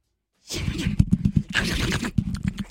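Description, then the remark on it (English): A person's voice imitates an excited raccoon that just found a peanut butter and jelly sandwich in the trash, making loud, rapid chittering and squealing noises in pulsing bursts for about two seconds after a brief silence. “A raccoon that just found a peanut butter and jelly sandwich in the trash.”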